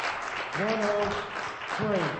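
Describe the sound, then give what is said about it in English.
An audience claps for a man in a dense, steady wash of applause, while a voice calls out twice over the clapping. “Let's give him a strong hand clap.”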